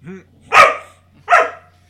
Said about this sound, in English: Dog agrees. Oh, you also agree.